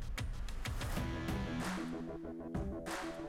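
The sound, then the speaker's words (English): A doorbell at the front door rings with a run of stepped, chiming tones over a busy, constant background, fairly loud, with no voices. “Fucking rings the door.”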